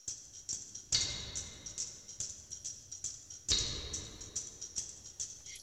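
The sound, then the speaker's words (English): Layered tambourine samples, EQ'd to give a sleigh bell frequency, play together in a steady, repeating rhythm, bright jingly shimmer on every hit with a couple of heavier accented strikes standing out. No voices. “Yeah, this is all the tambourines together.”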